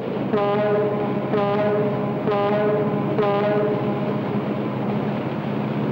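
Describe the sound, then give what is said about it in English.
A boat whistle sounds four short, evenly spaced blasts about a second apart, each a bright harmonic tone, over a constant low engine rumble. No one speaks. “Hey, Spiro, blow your whistle.”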